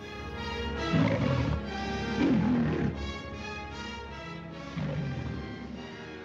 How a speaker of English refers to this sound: A public elementary school in New York City is putting on a production of The Wizard of Oz, but they're going to cast the role of the Cowardly Lion as a real lion. It's a real live lion!